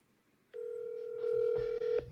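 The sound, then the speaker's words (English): A telephone tone hums steadily for about a second and a half as a phone call is placed to a friend, a single unbroken electronic note, with some faint clatter and noise creeping in toward the end. “I am going to phone a friend”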